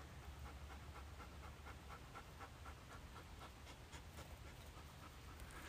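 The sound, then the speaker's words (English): A dog named Pepper pants steadily, quick rhythmic hot breaths repeating throughout with no pauses, over a constant low background hum. No one speaks. “And if we're lucky, we might hear them do their thing over Pepper's hot breathing.”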